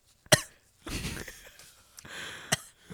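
A person coughs hard and close by: a sharp cough, then a rough, raspy coughing fit with strained breaths, and another sharp cough near the end. No one speaks.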